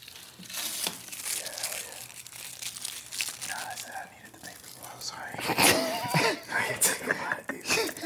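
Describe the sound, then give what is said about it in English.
Crisp crackling and rustling of paper being crumpled for ASMR, with irregular bursts growing louder toward the end, alongside soft breathy murmurs and whispering. “Where's some paper? I need some paper.”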